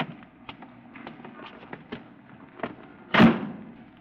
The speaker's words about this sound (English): cab pulled up at the curb and she opened the door for me.